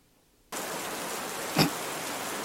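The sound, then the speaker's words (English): After a moment of silence, a steady wash of rain noise from the Rain Sounds by Sleep Jar ambient sound loop, played through Alexa, switches on abruptly and continues evenly, with one brief louder swell partway through. No one speaks. “Rain sounds by Sleep Jar is an ambient sound loop to help you sleep, relax, or focus.”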